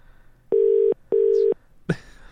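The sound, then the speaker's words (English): The ringback tone of an outgoing phone call sounds clearly: two steady, evenly pitched electronic beeps in quick succession, the classic double ring, followed by a short click or rustle. “It's ringing.”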